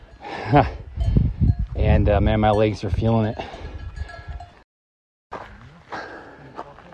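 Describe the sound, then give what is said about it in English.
Cow bells clank irregularly from a bunch of grazing cows on a high mountain pasture as a hiker walks by, overlapping with a man talking, then a brief silent break before the talking resumes. “You can hear the cow bells, walking by a bunch of cows.”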